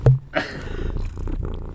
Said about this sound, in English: The whole audience is just gonna hear Dirtball purring. Here, one Dirtball's gonna give you a good old purr. Oh my god, he's so loud.